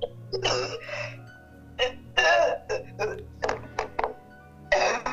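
A run of short, harsh coughs coming in quick irregular bursts with brief pauses between them, over a low steady background hum.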